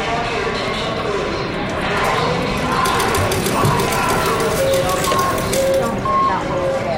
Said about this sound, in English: Just getting to this workshop required I run the auditory gauntlet of the Reno, Nevada airport, with its slot machines, canned music, and crowds.